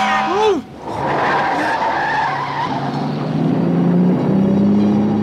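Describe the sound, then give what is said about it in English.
Loud tire squeal as a car skids and swerves to avoid a truck on Interstate 70 after the driver dozed off at the wheel, a sharp screech giving way to a sustained grinding skid with engine noise, intense, lasting several seconds. “Oh, I must have dozed off at the wheel. Oh, honey, if you hadn't seen that truck...”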